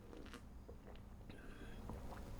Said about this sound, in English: A sip of coffee for the working man.